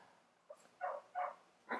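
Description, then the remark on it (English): A dog gives three short, muffled barks in quick succession, fairly quiet, with a brief faint yelp just before them and no talking, as the dogs are being let out. “I mean, you know, we're on live, so, and the dogs would have really been loud, so they”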